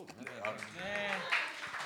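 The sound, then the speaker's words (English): A live audience breaks into applause, a dense wash of clapping mixed with voices and a rising cheer, steady and moderately loud for a couple of seconds. “I'm not used to breaking for applause.”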